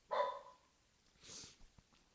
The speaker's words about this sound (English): My dog barking. I apologize.